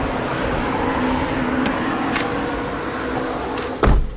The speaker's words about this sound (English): Oh my God, open the car door!